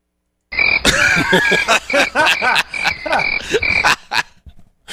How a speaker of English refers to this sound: First crickets of the day.